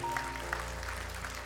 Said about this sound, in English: Amen. Amen. Can we clap our hands for Jesus? Amen.